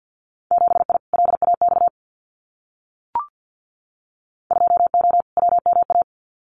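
Very fast Morse code at 50 words per minute, sending Winter Field Day contest exchanges, in a steady, mid-pitched tone: two rapid bursts of dits and dahs, a silent gap broken by a single short click, then two more quick bursts.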